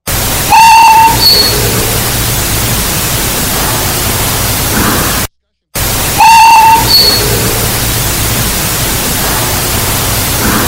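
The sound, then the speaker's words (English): A short, loud whistle from the playroom area rings out over a steady bed of static hiss on an EVP recorder clip, then after a brief silence the same whistle plays again in identical form. “That sounds like a whistle.”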